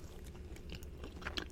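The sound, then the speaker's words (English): A woman chews loudly and wetly with several crisp crunchy bites, irregular smacking and clicking over a steady low background hum, no talking. “You can't trust a bitch that chews like that.”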